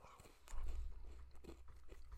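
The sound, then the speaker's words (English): Crunching as someone bites into and chews a Crunch bar of crisped rice and creamy milk chocolate, with crisp crackly bursts over a low rumble, fairly quiet and continuous with no talking. “Let me eat this.”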